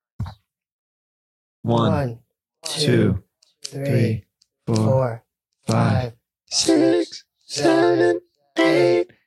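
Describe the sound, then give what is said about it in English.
A voice imitates scissors snipping, making about eight short, voiced bursts in a steady, even rhythm, each loud, separated by brief silences. “We're the scissors. We gotta do a scissors.”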